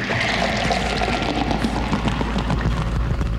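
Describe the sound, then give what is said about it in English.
Punch pours steadily into a bowl, a continuous splashing, gurgling stream with broad, noisy texture and a low rumble underneath, holding at an even, fairly loud level throughout with no talking. “When are you going to change the fluid in this bowl? I'm starting to feel like a car spun. Here's some punch, pal.”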